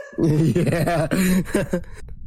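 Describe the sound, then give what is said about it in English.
A loud voice blurts out a wobbly, buzzing mouth imitation of a fart, lasting under two seconds and ending abruptly. “Fart noise.”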